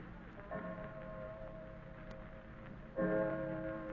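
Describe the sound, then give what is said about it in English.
A clock strikes two o'clock, two deep, ringing strokes about two and a half seconds apart, each bell tone lingering and fading, with a soft ticking hum beneath and no voices. “2 o'clock already.”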